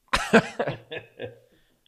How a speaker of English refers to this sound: I have to cough.